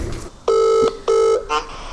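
Two steady electronic ringback tones of an outgoing telephone call, each about a third of a second long with a short gap between, sound clearly. A faint, brief voice-like blip follows.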